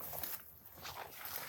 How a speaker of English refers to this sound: Not for exercise at all, but just to be in the experience of, you know, like I am now, just feeling these bushes kind of grab me as I walk by and hear the sound of the crunching grass under my feet and the voice of that flicker back there.